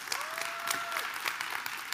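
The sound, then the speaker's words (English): An audience breaks into steady applause, many hands clapping at once in a dense, bright patter that holds at an even level for the whole two seconds, with a thin whistle tone briefly rising above it. “And so the end, you can clap for that.”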